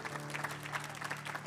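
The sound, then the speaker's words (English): Steady applause from an audience, a dense patter of many hands clapping continuously, with a low steady hum underneath, as young people come up to the front. “Keep clapping for these young people.”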